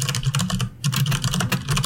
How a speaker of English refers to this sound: I bet you can really hear the clarity of my typing with this new microphone.